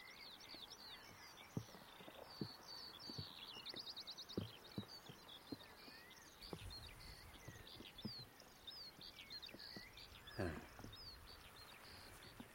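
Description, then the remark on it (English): A skylark pours out a continuous, rapid stream of high chirping and trilling notes, while low thumps of footsteps or handling knock underneath. “That's skylark.”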